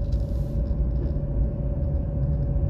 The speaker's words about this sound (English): So, you know, like, it's goddamn, so many trucks out here. Man, I just gotta come get some of these vehicles.